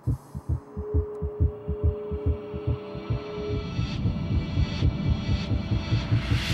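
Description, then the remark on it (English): A deep, thudding heartbeat pulses steadily in a film's opening sequence, its low double beats repeating while a droning hum and swelling, distorted tones build beneath and gradually thicken the sound. “The opening sequence to Hard Grit is iconic. The heartbeat, the distorted images, the guitar chords.”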